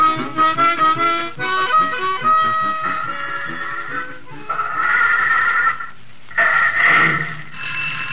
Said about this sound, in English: Hold it, Wilmer. Hold it till I get this phone. Okay, Skeezix. Wallet and Bobble Garage, Skeezix Wallet speaking.